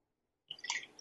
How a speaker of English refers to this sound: I'm gonna pour. I got a little 10-year-old scotch. Nice. Let's see if you can hear this.